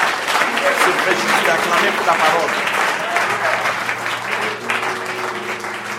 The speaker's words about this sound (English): About the message tonight, à voir le message ce soir. Sublime. C'était sublime. Amen. Amen. Just a round of applause for the word.